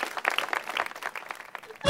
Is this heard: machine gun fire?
no